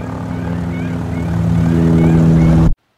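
An airplane engine drones steadily with a low, humming tone that grows slightly louder midway, then cuts off abruptly just before the end.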